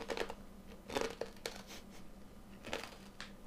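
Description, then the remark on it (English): Crisp, crackly crunches of someone biting and chewing a sweet potato chip, with several sharp bursts in an uneven rhythm over a low steady background hum, no talking. “It's very crunchy.”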